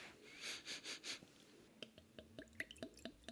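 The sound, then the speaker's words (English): Four quick sniffs in a steady rhythm as someone smells a glass of beer, followed by a scatter of light clicks and small handling knocks. “All right, I'm going to sniff it.”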